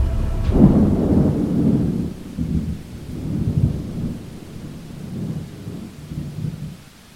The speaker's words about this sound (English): strobe lights flash to create lightning and thunder booms, while a strong wind surrounds the visitors and sprinklers create an absolute torrential downpour.